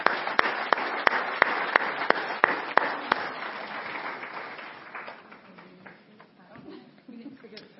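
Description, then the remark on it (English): An audience applauds in a dense wash of clapping, with a few sharp claps standing out in a steady rhythm at first. The applause then thins out and fades as murmured voices come in. “And I think we should clap for them because they're awesome.”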